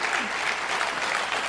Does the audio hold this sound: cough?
no